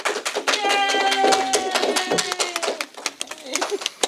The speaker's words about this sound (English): Welcome to the Women in Horror panel. Give the ladies a round of applause.